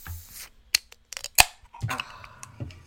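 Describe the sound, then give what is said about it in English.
A bottle of Goose beer with strawberry, coconut, lime, fleur de sel and coriander, 6% alcohol by volume, is pried open: a few sharp metallic clicks, then one bright pop of the cap coming off, followed by a soft fizzing hiss and faint clinks. “This bad boy is, it's a fleur de sel. It's 6% in alcohol by volume. Let's crack it open.”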